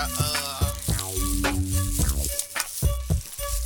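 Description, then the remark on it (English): Steady crackling fizz of a carbonated blackberry ginger ale bubbling, moderately loud, with faint tonal hum underneath and no talking. “blackberry ginger ale.”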